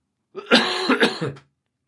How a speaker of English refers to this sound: I haven't got COVID, by the way, I just got a cough.